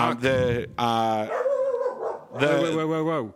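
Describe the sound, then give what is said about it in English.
A person imitates a dog, giving three loud, drawn-out barking yowls with a lower growl in the middle, sounding strained and playful rather than like a real animal. “There's a dog in the bar. No biting.”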